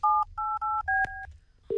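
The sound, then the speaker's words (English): A phone number is dialed on a touch-tone keypad to call Valentine's for a booking, four steady two-tone beeps in quick succession, then a sharp click and a low, continuous ringing tone starting. “Anyway, let's ring Valentine's.”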